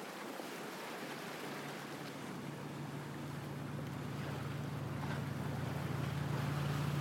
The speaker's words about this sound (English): Close your eyes and imagine you are cold and sitting in the back of a boat. The sky is cloudy and many airplanes are flying overhead. The water from the chilly ocean is splashing into your boat as you look ahead to see a beach